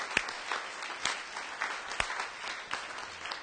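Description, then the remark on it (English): A church audience applauding the Lord, a steady wash of many hands clapping with a few sharper, louder claps standing out at irregular moments, moderate in volume with no voices. “Come on now, let's give Him a big, big hand clap.”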